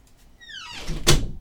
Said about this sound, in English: My door is kinda donked up where you have to like just give it an extra push once you close it. Yeah, and you have to hear it click. Yeah, you have to hear the click.